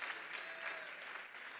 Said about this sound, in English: Come on, clap your hands and praise the name of the Lord.